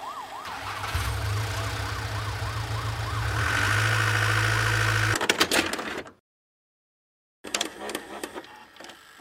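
police car sirens passing

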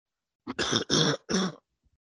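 coughing fit

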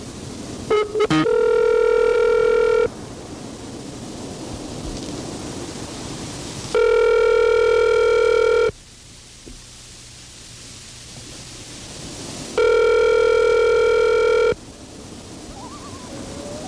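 telephone ringing

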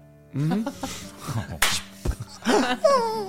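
slap across the face

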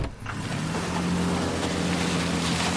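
car driving

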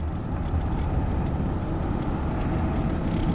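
truck driving

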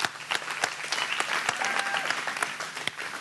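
audience round of applause

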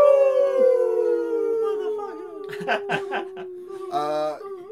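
wolf howl

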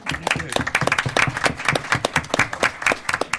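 audience applause

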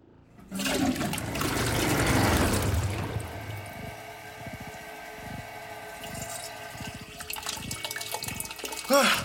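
toilet flushing

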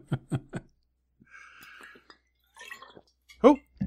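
drinking water

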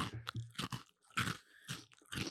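crunchy snack being chewed

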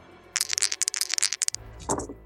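dice being rolled

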